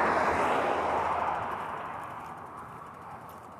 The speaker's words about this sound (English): Once again, you can hear the ticking of my bike being pushed.